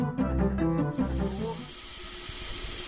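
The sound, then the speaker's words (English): A steam locomotive's steam hiss rises as steam is admitted to set it moving, a sustained broad rush that builds and holds, preceded by a brief low rumbling, fairly loud with no voices. “We're taking steam now. We're going to move.”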